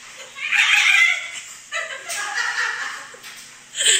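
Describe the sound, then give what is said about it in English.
A voice imitates a dolphin with high, squeaky, warbling squeals in three bursts: a long one, a second wavering one, then a short sharp squeak at the end. “What is the sound a dolphin makes?”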